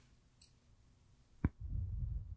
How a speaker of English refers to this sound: can you recall me? Because your poor connection is...